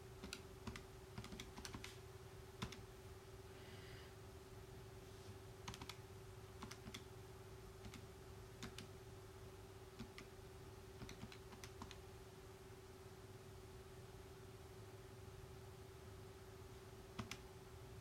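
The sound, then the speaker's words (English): Faint, irregular taps of calculator keys as 100 is divided by 0.0047, clustered in short bursts with pauses between, over a steady low hum. No one speaks. “100 divided by. Come on. Calculator.”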